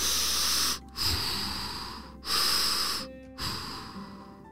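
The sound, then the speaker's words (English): A voice imitates an elephant breathing through its trunk: four long, loud, hissing breaths pushed out one after another, each separated by a brief pause, with no talking. “Oh, I breathe with my trunk.”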